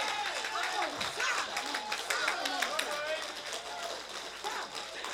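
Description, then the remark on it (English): A crowd claps hard and steadily for several seconds, the dense applause mixed with shouts and cheering voices, loud throughout. “Every man in here ought to clap as hard as you can clap.”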